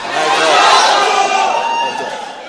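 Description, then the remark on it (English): An audience shouts "light up!" all at once to the people beside them, a loud, dense wash of overlapping voices that holds steady for about two seconds before easing off slightly. “The next person who is by your side, the other person, just, you may uncomfortably shout or scream, but just tell the person, light up!”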